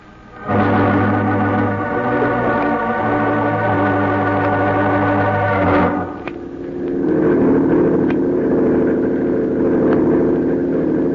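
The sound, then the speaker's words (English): A speedboat in Cuba, heading toward a pier, drones steadily with a low, tonal hum, then shifts partway through into a rougher, broader roar that stays loud to the end. No one speaks. “taking this speedboat instead of a plane.”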